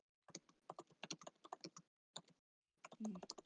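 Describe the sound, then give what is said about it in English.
Rapid clicking of keys on a computer keyboard as someone types a message, a quick irregular burst of keystrokes that pauses briefly and then resumes, fairly clear, with no talking over it. “I can hear you typing and you're going to do the word count.”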